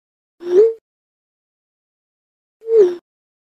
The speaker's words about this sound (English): That was a cell phone.